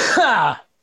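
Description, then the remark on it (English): A single short, raspy cough, loud and breathy with a rough voiced tail, ending abruptly in silence. “Was that a real cough or was that?”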